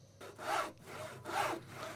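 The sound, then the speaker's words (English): A hand saw cuts through wood in two long, rasping strokes while set pieces for a theatre are built, each stroke swelling in a bright, gritty burst before a brief pause. No voices are heard. “I'd sit on an old pallet watching Dad build set pieces.”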